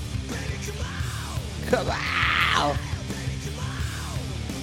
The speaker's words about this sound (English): If he did a lot more of that, I'd be way more down. He has a very clean scream. Yeah, I like the clean scream.